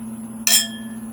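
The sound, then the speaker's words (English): A single bright clink of wine glasses touching in a toast, with a short ringing tail fading over a steady low hum. “Cheers.”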